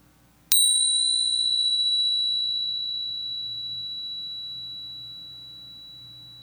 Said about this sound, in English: I'm going to ring my bell once to start and once to end.